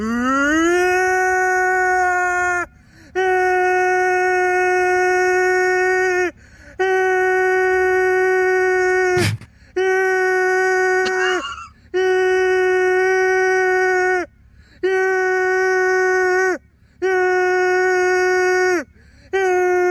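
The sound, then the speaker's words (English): Voices imitate a tornado siren with a loud, sustained wail that swoops up at the start, then repeats in about eight steady, droning blasts separated by short pauses. “Let's do a super tornado siren.”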